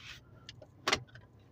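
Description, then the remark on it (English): A car idles with a low steady rumble as it is about to be moved, while a few sharp clicks and a brief rustling burst sound, with no one talking. “I got to move this car.”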